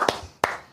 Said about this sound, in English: That's the claps